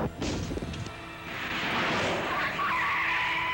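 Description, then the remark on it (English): Car tires skid and squeal loudly after a brief thudding impact, the screech rising into a sustained high whine over engine rumble, prominent with no one speaking, as Ash hits a man with the car while the man's arm is stuck in the car window. “Dude, Ash hits him with the car.”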